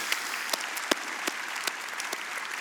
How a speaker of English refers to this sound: We have 81 volunteers of you who have said, I am in to start these children in the way that they should go. Can we just cheer on our next generation and our volunteers?